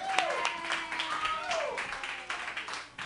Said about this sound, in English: Clap wildly.